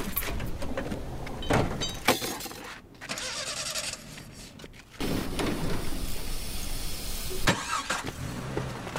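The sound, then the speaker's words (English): The engine of an old mobile home cranks and sputters, then catches and settles into a loud, steady rumble. There are clunks and rattles, and no voices. “It's a mobile home. You see it? That might shave off some time.”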